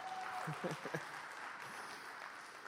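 An audience applauds a volunteer in a steady, dense wash of clapping that holds for a few seconds, with brief voices calling out over it near the start.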